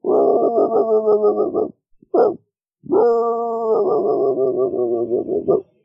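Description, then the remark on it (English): A person imitates a distant dog, producing long, wavering bark-like calls in two extended stretches separated by a short yelp and a pause. The imitation is fairly loud, with no other talking. “I do a great impression of a dog in the background.”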